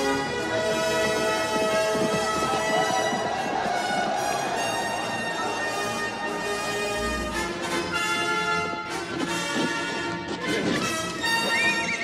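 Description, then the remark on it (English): A horse whinnies and its hooves clop along beneath a loud, sweeping orchestral score, the galloping mixed into the music rather than standing out clearly; from an Indiana Jones film scene where Indy rides off on the horse to go after a truck. “The moment when Indy rides off on the horse to go after the truck”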